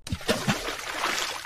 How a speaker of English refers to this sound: Sploosh.